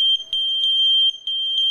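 A Kidde wireless smoke alarm, linked wirelessly to other smoke alarms so that when one sounds they all sound, gives a loud, piercing high-pitched tone that pulses in rapid repeating beeps, continuous with no voices.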